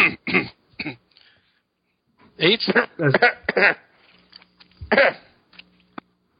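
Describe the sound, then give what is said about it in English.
Several bursts of coughing and throat clearing from more than one person, fairly loud, in short irregular clusters with brief pauses between them. “I don't know why we're all coughing, but, you know.”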